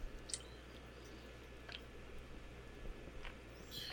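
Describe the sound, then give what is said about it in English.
Someone takes a sip of a drink, producing a few soft, wet slurping clicks spaced out over a quiet background hum, with no talking. “Sorry, I had to take a sip of a little drink.”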